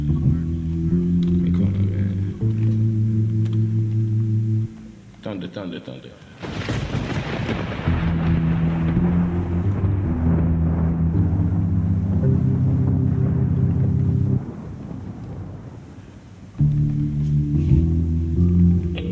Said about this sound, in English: Thunder.